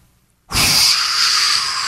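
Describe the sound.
During the 4-7-8 breathing method, a person exhales a long, steady breath through the mouth after a brief silence, meant as a whoosh: a loud airy hiss that sounds more like a drawn-out "shhh" than a whoosh, holding even for over a second.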